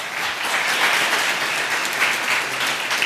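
An audience applauds steadily for about three seconds, a dense, even wash of many hands clapping with no voices rising above it.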